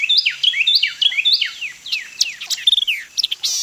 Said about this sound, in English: By this time, other birds have awakened, and Carolina wrens and white-eyed vireos are declaring their territories.